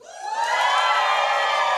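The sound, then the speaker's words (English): A church audience, practicing cheering for baptisms, bursts into loud, sustained cheering and whooping, a dense roar of many voices that swells quickly and holds steady without a break. “And so we're going to cheer. We're going to celebrate.”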